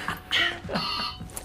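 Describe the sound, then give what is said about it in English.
A phone rings with a bright, electronic ringtone, its high tonal notes coming in short repeated bursts over a busy, murmuring background. “Oh, this phone call is from my random friend who'd love to ask you a question.”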